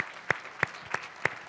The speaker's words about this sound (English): So If you guys could just give them a round of applause, because they've been awesome.